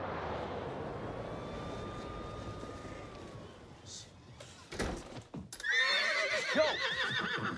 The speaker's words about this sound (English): Yo. There's a horse in your house.